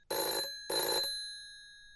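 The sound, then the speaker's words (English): A loud, harsh bell of a big rotary telephone rings in two rapid bursts, a rattling, almost drilling metallic clatter, with the second burst fading into a lingering tone. “And it's always the same kind of big rotary phone, like that loud, almost drilling sounding ringing.”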